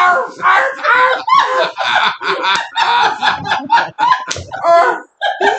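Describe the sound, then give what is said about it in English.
A person imitates a dog barking, letting out a rapid string of loud, nasal, yelping barks, with only brief pauses between bursts. “Okay, if you're going to yell, you need to bark like a dog.”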